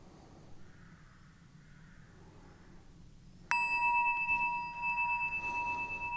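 After a few seconds of quiet room tone, a meditation bell is struck once, loud, its clear metallic tone ringing on steadily with shimmering overtones until the end.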